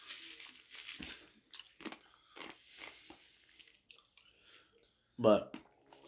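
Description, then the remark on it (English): Several crunching bites, like chewing ice, come at irregular intervals with crackly texture, ending in one louder, sharper crunch. “Sorry, I'm crunching on ice right now.”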